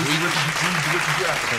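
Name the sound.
round of applause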